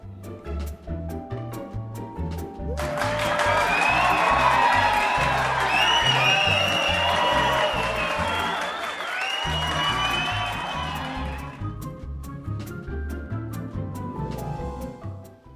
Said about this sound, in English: And the sound of our cheering fans means that it's always time for some listener comments.